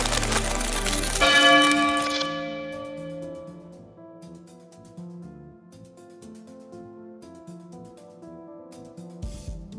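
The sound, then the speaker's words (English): A large iron bell strikes once, loud, its shimmering metallic overtones ringing out and slowly fading, followed by softer lingering tones with no one speaking. “I think she's planning to lure him here. Use the bell as a weapon.”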